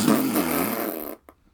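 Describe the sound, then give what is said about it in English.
A loud, raspy fart noise blares for about a second, then cuts off abruptly, followed by a brief, faint little sputter at the end. Nobody speaks over it. “And so is this fart noise.”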